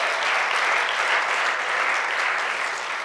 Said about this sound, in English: Amen, you can clap. Praise the Lord.